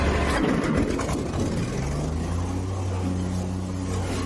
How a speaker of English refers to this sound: So he's mowing down more on a John Deere, which does look a little bit odd to me that he's doing that with a skid steer, small tractor. Yep. Plowing it up.